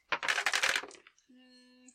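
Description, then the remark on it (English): Dice clatter rapidly for about a second as they tumble down a dice tower and rattle into a tray, followed by a short, steady humming tone. “I'm loving this combo of dice tower and dice tray.”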